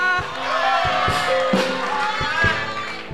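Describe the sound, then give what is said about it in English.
A church audience claps hands for the Lord in a steady wash of applause, with a few sharper beats standing out, blended with crowd noise and sustained musical tones throughout. “Oh, your hand clap is too weak.”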